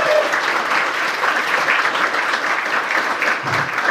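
An audience applauding steadily, a dense, continuous patter of many hands clapping at an even loudness for several seconds, with no voices standing out.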